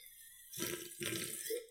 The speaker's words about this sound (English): I don't know if that sip sound effect came through. Yeah, well, it sounded disgusting, but yep.